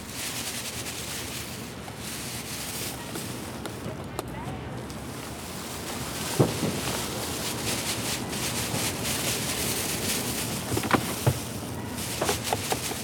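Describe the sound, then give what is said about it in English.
Steady crinkly rustling of a plastic bag with paper bags being crumpled and torn, as food scraps are emptied and the paper bags torn to be composted at the Lower East Side Ecology Center; a dense crackling texture broken by a few sharper snaps and crunches toward the end. “Plastic bag rustling, some paper bags kind of being like smushed and torn, which people do a lot of times when they bring their scraps in a paper bag and they empty the contents and then they tear the paper bag to be composted as well.”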